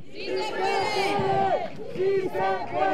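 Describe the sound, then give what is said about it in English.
A large protest crowd chants the slogan "Sí, se puede" in unison, voices rising and falling in repeated rhythmic phrases, loud with a dense murmur of many people beneath. “He urges the crowd to stand strong and fight President Trump's immigration policies and anti-sanctuary laws.”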